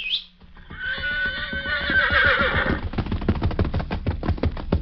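A horse gives a loud, quavering whinny lasting about two seconds, followed by a quick, steady run of hoofbeats clip-clopping close by.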